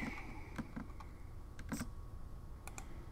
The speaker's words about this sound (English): What am I clicking? Just quit clicking. I yell at the girls all the time. Quit clicking. Here I am clicking. Slow down the clicking. Slow.